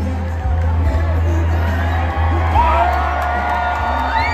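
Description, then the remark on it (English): A large rally crowd in South Carolina cheers and whoops continuously as President Trump takes the stage, a dense roar of many voices with scattered high shouts rising above the steady, loud din. “Here it is, the crowd shot. The moment President Trump took the stage in South Carolina.”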